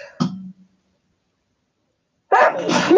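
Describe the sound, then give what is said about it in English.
A single sharp, explosive sneeze with a brief trailing rasp, followed by about two seconds of silence before a person starts talking again. “Excuse me.”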